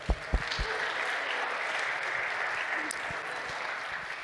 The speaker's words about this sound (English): And also, we have affirmed our elders as a community, so if you are a new elder or an elder, just please stand up and give you a round of applause.